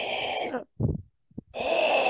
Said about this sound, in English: I'm doing some deep breathing here.